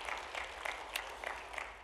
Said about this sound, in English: Come on, little pause. Give a little clap offering of praise right now. Come on, right now to our God.